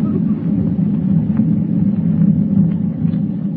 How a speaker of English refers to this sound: With thunder rolling across the dark ocean like a warning of impending doom,